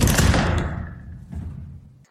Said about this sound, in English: We'll close the door.